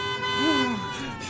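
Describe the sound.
A car horn blares in one loud, continuous tone, steady for over a second, from a car approaching rapidly from behind, while a brief voice-like sliding sound rises and falls over it.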